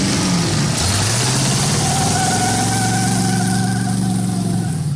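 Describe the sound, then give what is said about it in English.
A powerful supercharged car engine roars loudly and steadily, its pitch climbing as it revs, with a high whine rising above the deep rumble. No one speaks. “eBay even has cars with supercharged ponies.”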